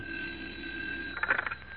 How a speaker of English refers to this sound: I'm expecting a call from the chief that my... Uh-oh, there's my phone now.